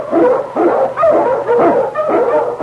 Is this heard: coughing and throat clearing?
no